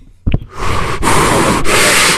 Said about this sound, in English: Oh, hello? God, there's like one with static and one that's breathing heavy into the phone.